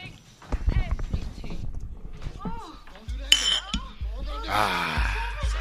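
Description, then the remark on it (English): Glasses clink together in a toast, a couple of bright, sharp chimes, mixed in with people talking and some low rumbling background noise. “I think we're going to clink it up.”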